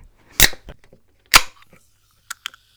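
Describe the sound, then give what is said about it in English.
A bottled bubblegum-flavoured drink is opened: two sharp, loud cracking pops with a brief airy hiss, followed by a couple of faint small clicks, with no talking. “Let's open the bubblegum drink.”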